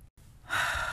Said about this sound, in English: So I really hope that sis isn't going to be annoying in the background with her breathing.